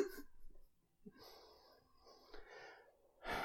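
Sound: person imitating snoring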